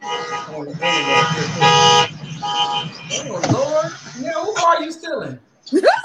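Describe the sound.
Several loud, sustained car horn blasts honk in quick succession, followed by people talking over fainter background traffic noise.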